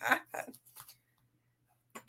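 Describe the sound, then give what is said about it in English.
A quick run of three short, abrupt burps, each a brief throaty burst, followed by a pause and then one more at the end, with no talking in between. “it's making me burp.”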